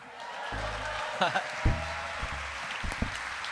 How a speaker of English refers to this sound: How about another round of applause for all of the performers tonight?